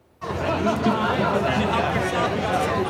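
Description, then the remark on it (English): Dense outdoor crowd chatter of large crowds at a car-free day street event on Denman Street between Davie and Robson in Vancouver's West End, in the afternoon: many overlapping voices forming a steady hubbub with occasional laughter, starting abruptly and holding constant at a fairly loud level throughout. “Large crowds took in the event that shut down Denman Street between Davie and Robson.”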